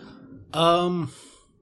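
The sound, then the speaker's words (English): A voice imitates a dog's snore: one short, throaty, rumbling snort lasting about half a second, fairly loud, trailing off into soft breathy noise. “We hear the tall tale sounds of a snoring dog that they guests brought with them, and they brought him down here.”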